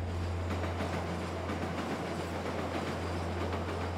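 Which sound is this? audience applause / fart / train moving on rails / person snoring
train moving on rails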